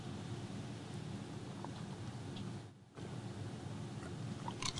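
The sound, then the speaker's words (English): Steady crackling and crinkling of a plastic water bottle being handled in a radio studio, a dense noisy rustle that briefly stops partway through, then resumes with a few sharper crackles at the end. No talking. “Oh, dear God, the water bottle made noise on the radio again.”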